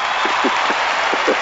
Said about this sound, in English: I think that deserves a crowd cheer.